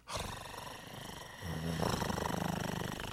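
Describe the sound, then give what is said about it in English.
A voice imitates the purr of a cat-shaped comfort pillow, sold by a company in Japan, that purrs when petted: a steady, low rumbling drone that deepens halfway through into a loud, rapidly pulsing growl-like purr, with no words spoken. “You see, a company in Japan is selling a cat-shaped comfort pillow that purrs when you pet it.”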